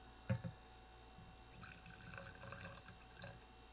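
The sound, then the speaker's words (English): A short knock of a bottle, then a shot of liquor glugs and splashes from a water bottle into a glass for about two seconds, fairly quiet, with no one talking. “We have the shots in a water bottle, so I'll take mine in this glass.”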